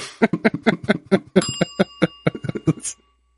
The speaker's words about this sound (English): Actually, I got a break bell ISO somewhere.